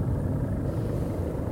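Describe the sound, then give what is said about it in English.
A helicopter drones overhead over Wellington, a steady low rumble that holds at an even level throughout without fading in or out. No voices are heard. “I have a view over the entirety of Wellington right now, and I cannot see that fucking helicopter.”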